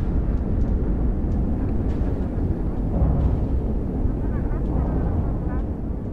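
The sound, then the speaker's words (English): A heavy, continuous low rumble of a large video game spaceship flying past, dense and steady with a slightly echoey, reverberant quality and faint radio chatter layered on top. “The flying sounds sound a little bit different. So, again, this is like a much bigger ship flying around.”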